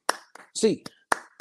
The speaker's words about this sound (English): Hands up, Bruins fans. 8 clap time, baby. And 1, 2, 3, 4, 5, 6, 7, 8.